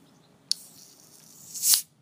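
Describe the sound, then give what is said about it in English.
A sharp metallic crack as the tab of a can of The Garden Brewery Session IPA, a 4% beer from Croatia, pops, followed by a sustained airy hiss that swells louder toward the end before cutting off. No one speaks. “Opens with a nice hiss.”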